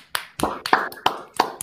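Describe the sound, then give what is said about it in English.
Six sharp hand claps in a steady, fairly quick rhythm, moderately loud, each with a short ringing tail and no talking; a round of applause for a member of the group. “And guys, I do want to seriously give a round of applause to one of our members, though, before we start the show.”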